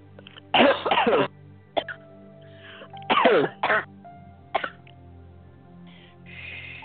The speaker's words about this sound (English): And just cough for me. I know that sounds kind of weird, but just give me a cough. Yeah, and just let deafness come out now, and just cough again.